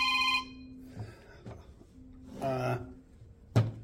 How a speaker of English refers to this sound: That phone's ringing, so Jesus Christ, we just want to let you know we love you.